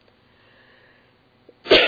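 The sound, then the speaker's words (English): A single sharp, loud cough bursts out at the very end after a stretch of near silence, harsh and breathy with a sudden onset. “I'm so sorry about the coughing.”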